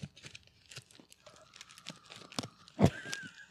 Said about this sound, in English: Everyone hear the crackle of the fire?